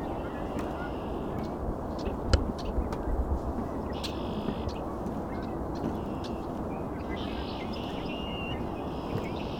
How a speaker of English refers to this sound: That means this place is full of red-winged blackbirds.